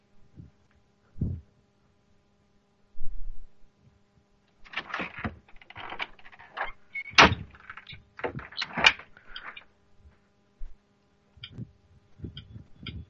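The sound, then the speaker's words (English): A door opening in a house: a couple of dull thumps, then a busy run of clicks, rattles and latch noises, trailing off into a few softer knocks. No one speaks. “I just heard somebody open the door in my house, but there is no one there.”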